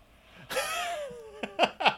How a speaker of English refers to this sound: is yawning not into the microphone. And is yawning so hard, she's rubbing her eyes. She's like a cartoon bear who's just woken up from a long winter's nap.